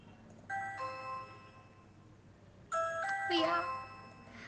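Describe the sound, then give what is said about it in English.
An electronic doorbell, rung by the milkman, chimes twice, each a bright multi-tone ding-dong that rings out and fades, with a pause of about two seconds between rings, clear. “Well, phone rang, doorbell rang, every time gave me hope of receiving a proposal on this beautiful propose day.”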